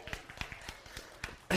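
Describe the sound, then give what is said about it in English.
A brief patter of scattered audience clapping, uneven sharp claps overlapping for about a second and a half before a loud voice cuts in at the end. “Can I get a clap on that?”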